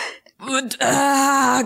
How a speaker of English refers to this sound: Okay, as I gasp back awake, do I remember anything from being inside the belly?